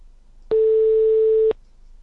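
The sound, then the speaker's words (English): A telephone ringing tone: one steady, mid-pitched electronic beep lasting about a second, clear and moderately loud, with faint hum and no voices around it. “Oh, it's just ringy dingy.”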